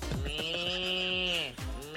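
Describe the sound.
Someone imitates a duck quack with one long, strained, nasal cry that wavers like a bleat. It is loud and lasts nearly two seconds, with a short break near the end.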